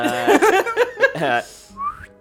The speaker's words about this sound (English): does a two-finger whistle to let Buddy know that they're coming